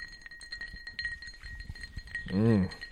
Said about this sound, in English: The sound of a shaker cup with ice in it kind of gets me hard.